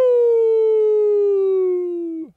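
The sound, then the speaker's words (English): A werewolf howl: one long, loud, unbroken wail that holds a steady tone and slides gently lower for about two seconds before cutting off abruptly. No talking. “That's a werewolf.”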